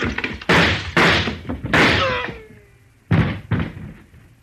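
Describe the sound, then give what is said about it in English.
Gunshots in a radio drama: about five sharp, loud bangs in an uneven volley, each with a short rumbling tail and a high whining tone trailing one shot. No one speaks. “Then I did shoot the right man.”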